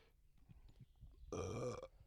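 A loud, forceful burp erupts suddenly, lasting about half a second with a rough, resonant tone, preceded by quiet low rustling and thumps.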